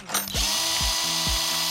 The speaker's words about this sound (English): Kapow, power drill with a 3/16 drill bit, please.